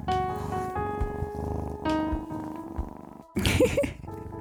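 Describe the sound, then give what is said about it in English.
A pet cat purrs, a low continuous rumble running beneath steady sustained tones, with a louder rustling burst near the end. “Oh, and in the meantime, my little kitty sends you some loving purrs.”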